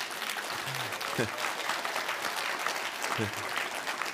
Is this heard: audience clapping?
yes